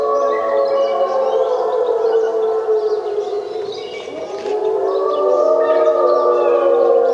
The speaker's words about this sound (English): So what we have here are wolves. We're in the middle of the Algonquin National Park in Canada. And this is a marvelous recording that I think illustrates that acoustics give us a sense of place.